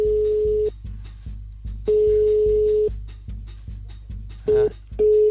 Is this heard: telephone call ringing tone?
yes